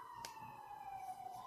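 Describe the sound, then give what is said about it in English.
An emergency siren wails faintly in New York City, its steady high tone sliding slowly downward with a slight rise at the end, heard alone over a low street hum. “Ooh, the sirens of New York.”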